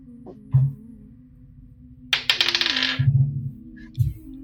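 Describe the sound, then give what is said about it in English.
Dice clatter and rattle across a hard surface in a quick burst of sharp clicks, fairly loud, then settle, with a few soft low thumps around them, as they are rolled twice for a perception check at disadvantage; the first roll is an 18. “Okay, the first roll on the dice was an 18.”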